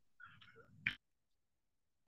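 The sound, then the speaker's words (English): A cat gives one short, soft, rolling vocal sound, followed by a sharp brief knock and then near silence. It is fairly quiet, with no talking. “He's bay window just looking at the waves, and he's the perfect fucking cat.”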